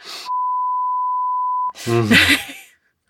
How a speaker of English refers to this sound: Sorry, that's quoting. So I guess I have to beep that out. Yeah. Or you can just beep out the last part.